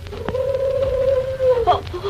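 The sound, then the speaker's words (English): A single drawn-out hoot owl hoot in the dark, a steady mid-pitched tone that holds for over a second before sliding slightly downward, heard alone over a faint hissy background with a brief click before it. “Just a hoot owl, Betty.”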